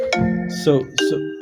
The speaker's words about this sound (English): So the issue, sorry. No problem. My phone's on mute, but it's next to the computer, so no problem. Rings on the computer.